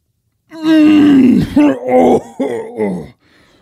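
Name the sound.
imitated heavy breathing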